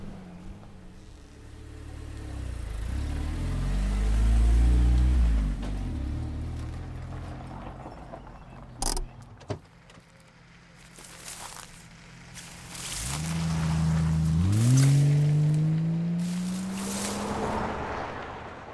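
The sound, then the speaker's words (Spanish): Road traffic rumbles on a noisy road beside which a car is parked: a vehicle's low engine drone swells and fades, a brief clatter follows, then another engine revs up and accelerates past. No one speaks. “Aparcamos el coche al lado de una carretera ruidosa y caminamos 100 metros en silencio para experimentar algo mágico.”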